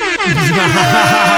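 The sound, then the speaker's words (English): A loud air horn blares continuously for over a second, a harsh, buzzy tone with a slightly wavering pitch and no voices over it. “Goddamn air horn.”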